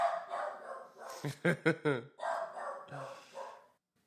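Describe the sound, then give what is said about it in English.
A dachshund lets out a burst of four quick, sharp barks in a row, loud, with a muffled background sound before and after. “I'm about to turn a dachshund into an actual hot dog.”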